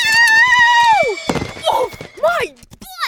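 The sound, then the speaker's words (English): A horse, Diablo, being ridden, gives a loud, drawn-out whinny that drops in pitch, then a heavy thud and scuffling, followed by more short, wavering neighs and snorts. “He's the meanest horse in the kingdom.”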